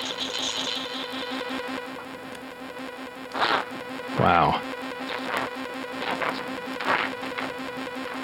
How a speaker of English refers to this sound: So, okay, so maybe you're somebody who's obsessed with distortion. This is three ring modulators.